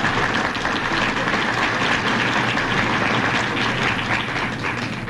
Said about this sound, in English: That's not really all the applause. I'm doing this without pay. Don't you want to do more than that?